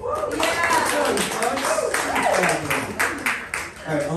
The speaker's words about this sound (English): Give it up, everybody. I feel like we need a nice clapping noise in here. It's usually louder in here. I think we need more alcohol.